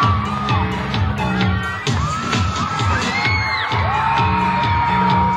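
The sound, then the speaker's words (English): A large crowd of about 3,000 teenagers in a concert audience screams and cheers continuously and loudly as a five-member singing group comes onto the stage, with high-pitched whoops and shrieks rising above a dense wall of excited yelling. “Teenagers screamed in anticipation.”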